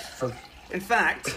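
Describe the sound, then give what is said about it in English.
Water runs and gurgles in short bursts, as if poured from a tap into a container, with bubbly tonal sloshes and a soft hiss underneath. “I'm going to get some water”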